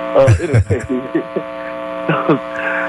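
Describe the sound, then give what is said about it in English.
A steady electrical hum of static buzzes through a caller's phone line on the Sunday Forum show the whole time, loud and constant, while muffled voices break in briefly near the start and again later. “You got a bad connection there. We're getting a lot of static.”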